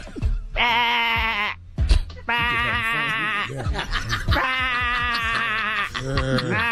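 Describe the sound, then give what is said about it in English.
A woman, asked to do a sheep, imitates one, giving three long, loud, wavering bleats in quick succession, with short pauses between them. “do a sheep.”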